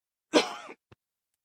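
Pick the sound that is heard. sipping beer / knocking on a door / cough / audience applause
cough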